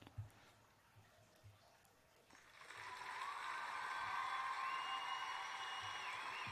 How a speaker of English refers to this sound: Thank you, thank you, thank you for the cheering. That was very, very cheesy. I'm using a new podcast platform that has sound effects.